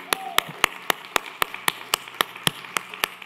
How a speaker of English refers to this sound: Let's applaud this day, okay?